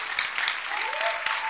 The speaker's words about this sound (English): I want you to stand to your feet and clap for this gift. Clap, clap, clap from the depths of your heart.